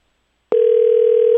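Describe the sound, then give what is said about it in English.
A phone line rings on an outgoing call to the Atlanta Falcons: after a moment of silence, a steady, even electronic ringback tone starts and holds at a constant pitch, clear, with no one talking. “It's ringing. Good sign. It's a good sign with phone calls.”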